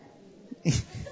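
A single sharp sneeze from someone in an audience, somewhat distant and moderately loud, bursting out briefly against quiet room tone with a faint rustle afterward.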